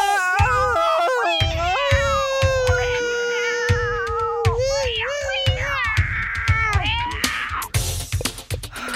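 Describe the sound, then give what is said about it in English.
A cat meows loudly and insistently in long, wavering, drawn-out yowls, agitated, with a rhythmic thumping underneath throughout. “The cat's all upset.”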